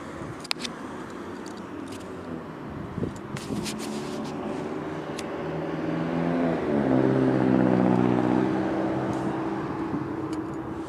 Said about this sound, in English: Bus number 1216 going westbound. That's Omnitrans.